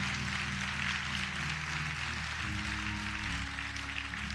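An audience applauds steadily throughout, a dense, even wash of many hands clapping at a fairly soft level, with a low steady hum underneath and no voices.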